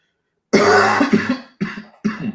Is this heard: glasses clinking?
no